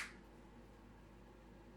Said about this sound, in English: And dare I say, and viewers do this with us, we'd like to give him a clap, followed by a moment of silence. Absolutely. Three, two, one.